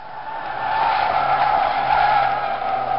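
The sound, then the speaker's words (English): A car's tires screech in a long, loud, sustained skid that holds steady for about three seconds, harsh, with no voices: a car braking hard as light snow falls, skidding off the road into a tree. “So she slams on the brakes. She skids off the road.”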